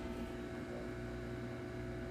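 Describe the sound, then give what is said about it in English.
A washing machine runs with a steady, droning mechanical hum and low motor tones, holding an even level throughout with no voices. “That's Mimi's washing machine.”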